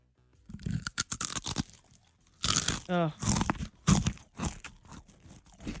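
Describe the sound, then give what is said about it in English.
A voice mimics rapid, repeated crunching of a single Cheez-It cracker being chewed, a quick series of sharp, crackly bites with a brief voiced hum mixed in, fairly loud and unbroken by speech. “he'll take one Cheez-It and he'll bite it 6,000 or 7,000 times”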